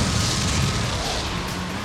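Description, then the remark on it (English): Continuous loud, dense rumble and roar of explosions in a 007 video game as the player blows everyone up, blending together for a couple of seconds, with heavy low end and a broad hiss above and no clear separate blasts. “Alright, I'm blowing everyone up.”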